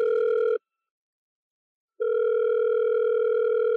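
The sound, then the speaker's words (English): A telephone ringback tone purrs steadily in the earpiece during a call to the league's referee office, one long ring, a pause of about a second and a half, then another ring beginning, with no voices. “Okay, that's a number. Okay, good, it's ringing.”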